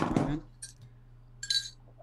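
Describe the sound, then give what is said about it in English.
A glass clinks twice as someone takes a sip: a soft low thump at the start, then a short bright tap followed by a louder ringing clink, with a steady low hum underneath. “Well, let me take a sip.”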